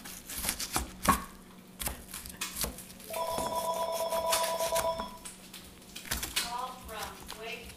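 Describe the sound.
A telephone rings with an incoming call from a woman's brother, a steady, clear electronic trill lasting about two seconds in the middle, while people talk around it and a few sharp clatters sound beforehand.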